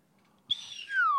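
A slide whistle blows one sharp, breathy note, then slides steadily downward in pitch, loud and close, with nothing else sounding around it.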